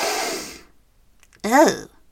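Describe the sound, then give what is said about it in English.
A woman leaning over Gretel's bed in the tale of Hansel and Gretel draws a long, breathy sniff in through the nose for about half a second, fading out, followed after a pause by a short voiced murmur that swoops in pitch. “She leant over Gretel's bed and again took in a deep sniff.”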